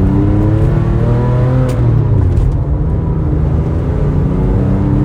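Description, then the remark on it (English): A sports car engine revs loudly while driving at legal street speeds on a slightly curvy road, its throaty pitch climbing and easing through the gears in a continuous, rumbling stream with no one talking. “Like, it gives you like so much character. Like the engine sounds, the inputs, like just everything.”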